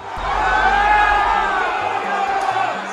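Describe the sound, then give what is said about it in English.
A large angry crowd of Trump supporters shouting and yelling inside the halls of Congress during the US Capitol riot, many overlapping voices forming a loud, continuous roar with raised, strained cries rising above a low rumble throughout. “The shattering of glass, the screams and shouts of those who made it inside as they scoured the cavernous halls of Congress.”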